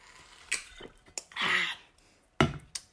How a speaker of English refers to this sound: For the Super Bowl, let me take a quick sip of water.